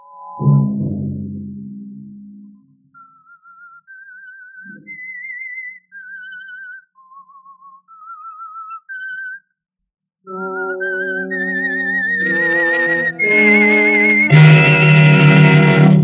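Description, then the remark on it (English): A lone wavering whistle carries a slow, eerie melody of sustained notes rising and falling, then a loud orchestral passage with brass swells in and builds to a full climax; the opening theme of the CBS radio program The Whistler. “Have you heard the strange tales of the Whistler?”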